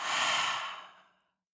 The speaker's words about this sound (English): And I want you to think of that one thing at the top of the breath as we hold the breath, okay? So breathing in, holding and thinking of that thing, and breathing out.